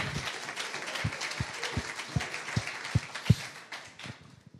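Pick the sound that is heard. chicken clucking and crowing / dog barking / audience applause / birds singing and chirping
audience applause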